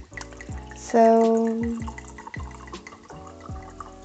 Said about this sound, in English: And I'm pouring myself a glass of wine because I had a hard week.